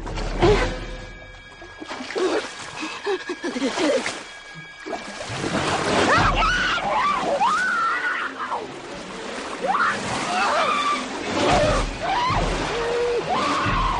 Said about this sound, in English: Chrissy swims out into the water, and this is one of the scariest scenes I can think of anything ever.